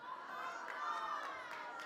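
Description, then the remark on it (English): A live audience erupts in sustained applause mixed with whoops and cheering voices, a dense, steady crowd roar filling the room for a couple of seconds. “Please do not applaud that. That does not deserve your applause.”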